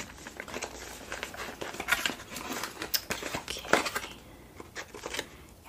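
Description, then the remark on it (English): The tightly wrapped plastic packaging of a mobile phone LED light is torn open, its sticker ripped: an irregular run of crinkling, crackling rustles with a few sharper snaps, steady and fairly soft throughout, with no voices. “So I managed to like rip open the sticker. This thing is like tightly packaged.”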